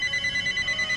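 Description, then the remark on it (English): A telephone rings with a steady, rapid electronic trill, its bright tone warbling continuously through the whole second at moderate volume, with no voices over it. “You know, why is it the phone rings when I record these episodes?”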